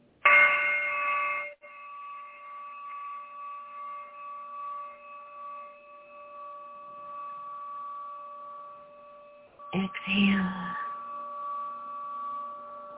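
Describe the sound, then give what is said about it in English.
A meditation chime is struck twice, about ten seconds apart. Each strike rings out clearly, and its steady, pure tone hums on in a long, slow fade between the strikes. “As you exhale quietly, calmly the breath, evenly like the chime.”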